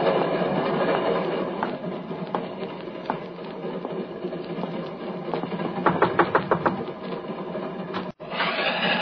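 A train rolls steadily along the rails with a constant rumbling roar, and a quick run of rhythmic clickety-clack beats rises near the end before a brief break in the sound.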